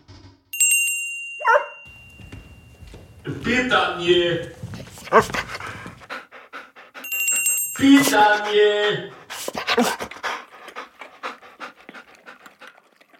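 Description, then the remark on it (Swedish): A small bell rings twice, each time followed by excited dogs panting and whimpering, with a brief spoken word in between, evoking Ivan Pavlov's dogs, to which he rang a bell before feeding them. “Du känner säkert till Pavlovs hundar.”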